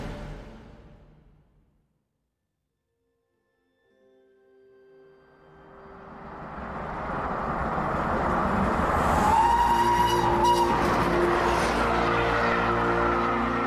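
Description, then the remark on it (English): After a fading noise and a short silence, a train's rumble swells and roars loudly past in the Swiss Alps, with a sustained whistle blast sounding near the peak of its passing. “A train blasts its whistle as it thunders through the Swiss Alps.”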